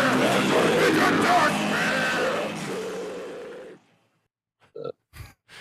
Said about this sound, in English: I haven't heard that in a while. That scream is still solid, you know?